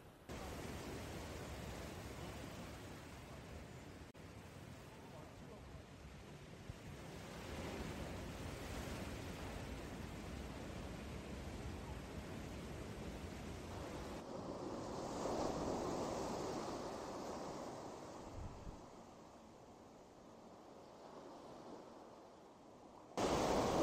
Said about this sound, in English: there is warning after warning out here, posted and signs, you know, that when the ocean gets like this, it's dangerous, and it's there could be bacteria and fun stuff like that. But it is, it's just relentless.